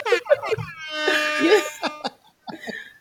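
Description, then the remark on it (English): A few short, bright honks give way to a sustained, blaring air horn blast with a buzzy, harmonic tone, followed by a brief pause and two quicker honks at the end. “It feels like you use my air horn, y'all.”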